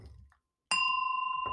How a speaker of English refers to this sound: So I'm going to ring my bell now.